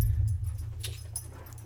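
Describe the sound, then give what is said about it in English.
Dogs whimper softly in short, high-pitched bursts over a steady low hum, the sound fairly quiet, with no one speaking. “All right, come on, dogs.”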